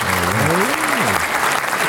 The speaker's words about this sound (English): That deserves a fucking round of applause.